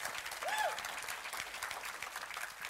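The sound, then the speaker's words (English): An audience applauds for what God has done in their lives, with steady, dense clapping that fills the whole moment at an even volume, and a short rising whoop or whistle cuts through near the start. “If he's done that, would you give him a hand clap right now for what he's done?”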